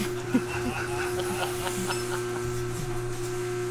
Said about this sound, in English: I feel like it's the longest it's ever taken for that door to close. Should have just pulled it closed.